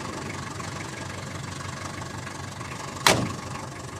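A taxi's engine hums and rumbles steadily throughout a short ride across London, with no talking, broken by a single sharp thump or knock shortly before the end.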